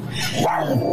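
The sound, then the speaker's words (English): A woman's dogs bark loudly in a brief, rough burst that fills the whole second, with no clear pauses between the sounds. “She's talking about her damn dogs barking.”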